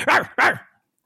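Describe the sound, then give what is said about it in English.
A person imitates a dog, letting out two quick, loud barks in a row, with harmonic voiced sweeps that fade out after the second bark. “You know what would be hilarious is if at 10:30 at night you go into your backyard and start barking?”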